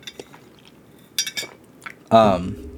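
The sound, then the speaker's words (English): A cup is picked up for a drink of water, with a few light, bright clinks against a hard surface, followed by a louder, ringing clatter of ceramic near the end. “sorry, I'm gonna grab a cup, drink of water before I kneel over and die.”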